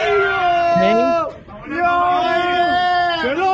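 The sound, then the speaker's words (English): A group of voices cheers loudly in sustained, rising shouts inside a destroyed Palestinian home, with a short dip in the middle before the chorus of whoops surges back up. “All cheering in, by the way, a Palestinian home they destroyed.”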